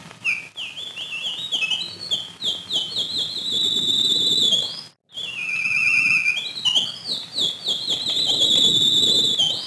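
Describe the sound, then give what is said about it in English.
A synthesized bird sound effect played on an electronic keyboard: rapid, high-pitched electronic chirps and warbling tweets repeating in fast sweeping runs, with a brief break midway before the chirping resumes. No one speaks. “And bird, if you will.”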